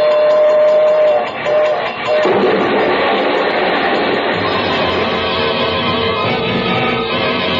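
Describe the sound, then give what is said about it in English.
A train rumbles at a crossing, a steady loud roar with a brief horn-like tone early on, then thickening into a heavy, continuous clatter as it approaches. “We're coming to the crossing. It's There's quiet a train.”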